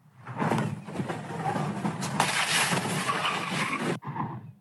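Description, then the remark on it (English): A rented 2018 Tesla speeds through an intersection near Baxter Street and Alvarado in the Echo Park neighborhood of Los Angeles with a loud, sustained rush of road and tire noise, ending in an abrupt cut around four seconds followed by a brief clattering burst as it goes airborne and slams into two parked cars and trash cans. “That Tesla blowing through an intersection, going airborne, then slamming into two parked cars and several trash cans.”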